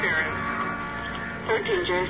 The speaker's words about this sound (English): Interference. 13J, stand by.